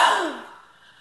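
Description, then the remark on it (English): A single deep, breathy exhale during a breathing exercise, fairly loud at first, tapering off into quiet within about a second, with no talking. “Exhale.”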